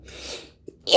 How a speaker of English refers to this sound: Dude, that was so cute. Thank you. You always sneeze in threes? I try not to. It's the devil. It's real adorable.